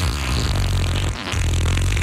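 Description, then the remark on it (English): A loud, buzzy fart sound effect rumbles low and raspy for about two seconds, with a brief break partway through before it resumes. No one speaks. “Bringing you the best fart sound effects of yesterday, today, and tomorrow.”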